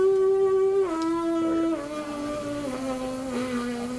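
Lips buzz through a horn-style embouchure, making a loud, reedy drone that steps down in pitch a few times over about four seconds, with no talking.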